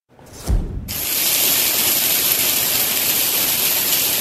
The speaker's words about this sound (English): Thunder and a whole lot of hail rolled into this Maple Ridge neighborhood. The resident who sent us this video says the skies were clear only 5 minutes earlier.